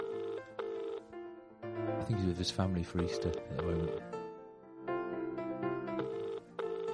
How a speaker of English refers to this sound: We're FaceTiming so he can see us. No, it's ringing. Put the speakerphone on. It's ringing.